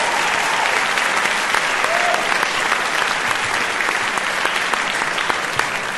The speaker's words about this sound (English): I just want to ask for a round of applause for the way they did this.